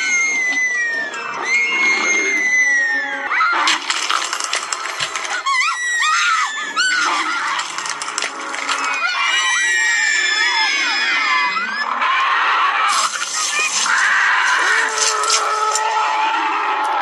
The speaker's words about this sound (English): And just before morning, he would jump out and eat them all. And the children would scream and try to escape.